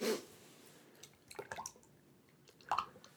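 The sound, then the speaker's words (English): A tomato-based drink mix, without vodka, is poured from a 32-ounce mason jar in a few short glugs and splashes, with a brief clatter at the start and quiet pauses between the pours, moderately soft. “Let me pour you a little.”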